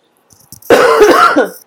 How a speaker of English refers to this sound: Yeah, still coughing a little bit.